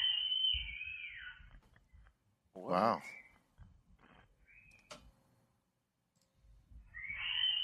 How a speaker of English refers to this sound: I caught an orb with three screams in my baby's room. Nobody was home at the time. With three what? With three screams. On three screens, there's one orb. One. And the screams, he says. You can hear the screams in the back.